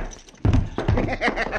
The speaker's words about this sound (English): That is a grave insult, and I slap your face. I return the slap, senor, with interest.